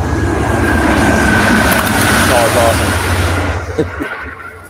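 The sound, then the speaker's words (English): A train roars past the speaker, a loud, steady rumble with a faint high whine running through it, then it quickly drops away in the last second. “I got a train going by me here.”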